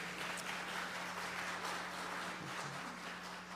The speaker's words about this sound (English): You got a round of applause there